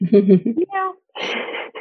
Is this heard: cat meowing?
yes